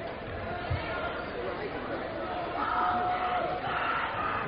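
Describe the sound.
The Corona cheering section at an Owosso versus Corona basketball game cheers during an Owosso free throw in a steady, dense roar of many voices, with shouted calls and a few sustained yells swelling midway through before the noise carries on undiminished.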